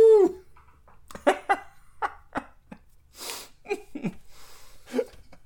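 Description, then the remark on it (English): A human voice imitates an eerie cryptid howl, an Alabama howler: a short, bright wail that slides downward, followed by a rapid string of breathy yelps, hisses and clicking vocal bursts. “You thought you heard some Alabama howlers before.”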